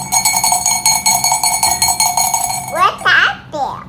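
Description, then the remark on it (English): A bright, ringing bell chime with steady metallic overtones, struck repeatedly in a quick, even rhythm, then giving way to a few fluttering, chirpy warbling tones at the end. It signals a page turn during a read-aloud of the Berenstain Bears' Sleepy Time Book. “And whenever it's time to turn the page, this is the sound you'll hear.”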